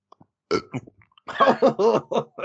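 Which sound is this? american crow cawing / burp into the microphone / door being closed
burp into the microphone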